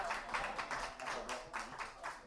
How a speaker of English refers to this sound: This is his first time coming up and playing beats, man. So round of applause for that, man. That was dope.